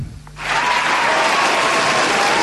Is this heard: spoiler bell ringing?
no